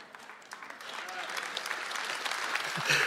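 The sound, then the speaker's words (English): A soft, scattered golf clap from an audience, a quiet patter of many hands clapping steadily for about three seconds, with no cheering or voices on top. “Well, that was like a golf clap.”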